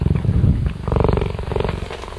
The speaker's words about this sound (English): I will tell you, this purr from this cat